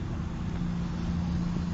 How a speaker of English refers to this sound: And here comes a truck to interrupt my podcast. I will wait for it to pass by.